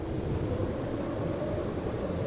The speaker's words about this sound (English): The only sounds are the howling of the wind and the hiss of fast-falling snow.